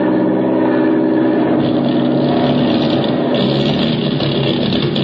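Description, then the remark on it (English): An airplane engine over the Indian Ocean drones loudly and continuously, its low, rough roar pulsing unevenly as if the motor is struggling and sputtering. No one speaks. “We've got motor trouble.”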